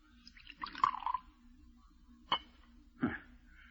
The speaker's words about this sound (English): Pour it out. Okay.